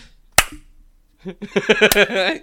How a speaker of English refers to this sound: You really need to work on your like sarcastic slow clap. For these moments, you know, that's what you really want to get.